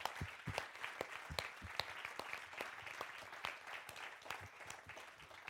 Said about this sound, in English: I think we need to give them a warm, Abundant Life, a round of applause.